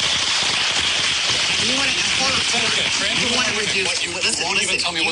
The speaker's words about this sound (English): And so trans women. Listen to the applause.